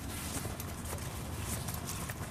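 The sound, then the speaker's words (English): Horse hooves clip-clopping in a steady, even rhythm, a run of repeated hoofbeats at moderate volume with a low rumble underneath and no voices. “That's a great horse down there.”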